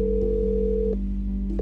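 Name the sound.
phone call ringing unanswered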